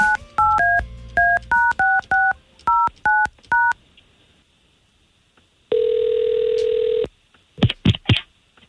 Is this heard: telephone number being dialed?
yes